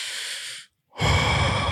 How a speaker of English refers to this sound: Just, all right, let's actually do a deep breath. So it's just breathing with your nose.